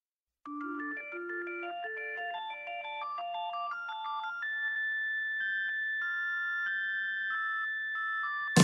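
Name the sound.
phone ringtone going off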